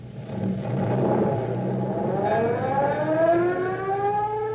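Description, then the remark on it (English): A fire engine's siren winds up as the truck roars off to a fire, its wail climbing steadily in pitch over a loud, continuous engine rumble. No one speaks. “All aboard, boys! Let her roar!”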